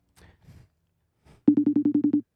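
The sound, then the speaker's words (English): A few soft, indistinct murmurs, then a quick electronic FaceTime ringing tone as a video call is placed: eight rapid, evenly spaced loud beeps forming a short burst of the ring. “Sounds like we're FaceTiming this boy.”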